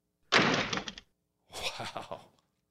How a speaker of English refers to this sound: For me, would you mind doing a door slamming wink? That's a door slam. But we put the sound in.